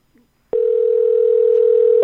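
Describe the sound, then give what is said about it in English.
A steady telephone dial tone holds at one pitch for about a second and a half, loud, beginning and ending abruptly after a faint brief sound, as a caller is phoned back. “So do you want me to give them a call back? Yes, of course. Okay, here we go. We're trying you back.”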